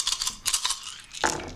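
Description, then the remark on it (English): Four dice clatter and tumble across a hard surface in quick bursts of bright clicks, then settle after a final sharp knock. Fairly quiet, with no voices. “Oh, I did not roll well.”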